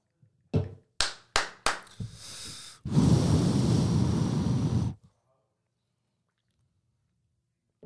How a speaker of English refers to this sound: Drilling, what is that? Mm-hmm. Like what on earth? They are drilling all the time.